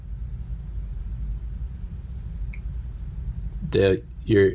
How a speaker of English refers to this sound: Your audio broke up. Can't hear you. Fucking internet.